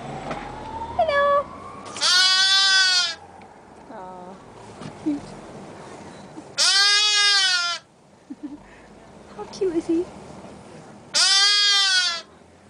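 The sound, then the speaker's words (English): Three loud, wavering bleats from a lamb at a petting zoo, spaced a few seconds apart, each lasting about a second, with faint scattered noises and quiet background sound in between. “Yep, sheep. Sheep.”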